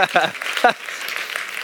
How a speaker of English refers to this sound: You can clap for that.